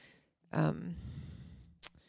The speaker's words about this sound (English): Oh, now you're yawning.